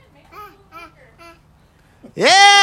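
A baby boy, clapping, babbles a few short, soft syllables in a quick cluster, pauses, then lets out a sudden loud, high-pitched squeal that rises and holds to the end.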